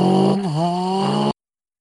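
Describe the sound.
A person vocally imitates the engine sound of a Formula 1 car in an F1 car video game: a loud, buzzing, harmonic drone that dips in pitch briefly, then holds a steady whine for just over a second before cutting off abruptly.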